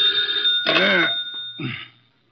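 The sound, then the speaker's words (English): An old-fashioned telephone bell rings in two short, clattering bursts, fairly loud, with a faint steady hum underneath and no voices. “Oh, dear, who moved that phone?”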